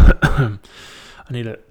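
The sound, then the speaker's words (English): A person coughs a couple of times, short harsh bursts followed by a brief pause and a final throaty, voiced cough. “I need a cough button, like they say in the what's his name, Joe Rogan's podcast.”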